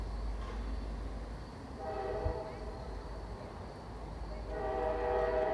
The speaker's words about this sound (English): In my study, I hear trains pass about a block away on 3rd Street.